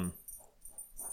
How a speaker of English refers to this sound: All the players, as my dog is going nuts behind me, relax. Sorry about that.